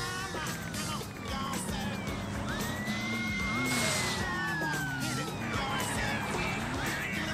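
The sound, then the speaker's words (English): A police car siren wails in rising and falling sweeps over steady traffic rumble, continuous throughout, with faint indistinct voices in the background. “Oh, there's another cop car over there.”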